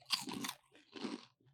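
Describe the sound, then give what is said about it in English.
Two loud crunching bites into a cheese puff chip, each a dense burst of crackling followed by brief chewing, with no talking. “I'm just going to crunch into everyone's ears.”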